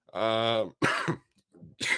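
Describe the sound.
A man coughs and clears his throat close to the mic, a voiced rasping burst followed by a few harsh, breathy coughs in quick succession.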